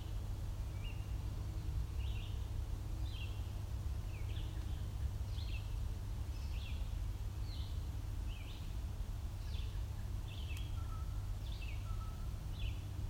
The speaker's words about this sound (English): That's a blue jay making a weird call. It's making a bit of a weird call, but they do that.